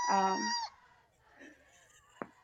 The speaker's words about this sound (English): Can you hear him? That was the funniest cat yell I've ever heard. Ever. That he hates when I'm on Zoom or like FaceTime or anything.